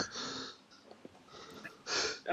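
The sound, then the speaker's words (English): A loud sneeze: a noisy breathy burst, a short quiet pause, then a second sharp, hissing blast of air, with no talking over it. “Pardon me. Bless you.”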